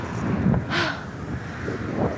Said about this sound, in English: It's so windy. Oh my God.